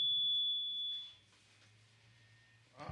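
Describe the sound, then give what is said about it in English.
A steady electronic buzz with a low droning hum and a thin high whine, mobile phone interference from a phone held too near the audio equipment, pulsing at first then settling into a constant tone, with no talking. “Yo, we having some technical difficulties, baby. Yep. Oh, you know what? Move your phone away from the thing.”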